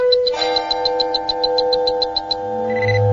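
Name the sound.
alarm ringing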